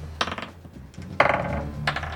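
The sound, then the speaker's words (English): Dice clatter and tumble across a tabletop during a game in two bursts of quick rattling clicks, fairly loud, with a low hum underneath, coming up a 4 and a 5. “These dice are not doing good so far. Uh-oh. I rolled a 4 and a 5.”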